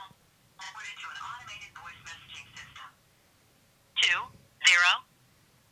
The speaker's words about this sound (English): Why is your phone ringing? What are you talking about?